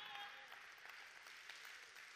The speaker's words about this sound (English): Come on, clap today if you're thankful for where God has you.